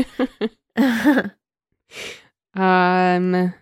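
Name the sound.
yawn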